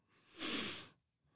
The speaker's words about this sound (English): Excuse me, I must be really tired, so I keep yawning. Not bored, I just exhausted.